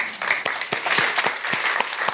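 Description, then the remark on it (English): An audience applauds people who have been asked to stand, steadily, many hands clapping together in a dense, continuous patter with a few sharper individual claps standing out, fairly loud throughout. “So if I called your name, or if you fit in any of those categories, would you please stand so that we can applaud you?”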